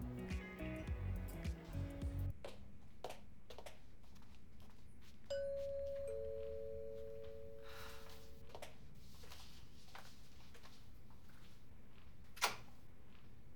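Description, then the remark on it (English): A doorbell rings with a two-note ding-dong chime whose tones linger for a few seconds, following a short burst of music, with a sharp tap shortly afterward. “I'm so glad it's you who answered the door.”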